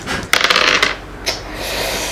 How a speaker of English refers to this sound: So, roll me 2d6 plus your violence for a go all out.